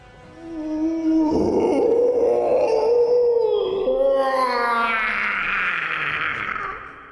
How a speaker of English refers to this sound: You hear this horrific howl.